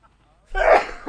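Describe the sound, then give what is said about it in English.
A single loud sneeze erupts as a sharp, breathy burst after a brief quiet moment, followed by a short softer exhale. “Bless you.”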